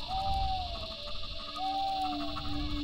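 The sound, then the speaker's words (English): A powerful owl calls twice, each a drawn-out, mellow hoot with a slight rise and fall, heard against a steady background hum and low rumbling noise. “Powerful owl”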